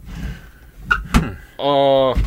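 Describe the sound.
Two quick wooden clunks and scrapes of drawers being yanked open while searching for a cat sound over a low rumble, followed by a brief voiced exclamation.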